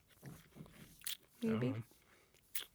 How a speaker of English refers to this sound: Ochre break. Sorry to everybody who's going to hear us chew for a second.